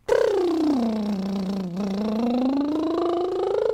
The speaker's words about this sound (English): Let's do a lip trill together.